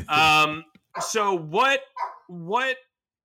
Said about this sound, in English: as you hear my dog bark in the background.